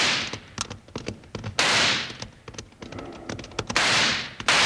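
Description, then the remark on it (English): A rapid, irregular volley of sharp six-gun shots, fired at long range to scare off a man, loud cracks spilling one after another, broken by two longer hissing bursts like whining ricochets. No one speaks. “Well, we can't hit him at this range with a six gun. We can scare him off, though.”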